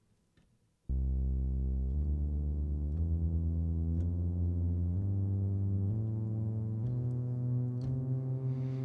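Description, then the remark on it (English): A keyboard plays a rising whole-step scale of about eight sustained notes, roughly one per second, each blending into the next with a full, steady, organ-like tone and no voices. “Just by going up and down my keyboard, you can kind of get the idea.”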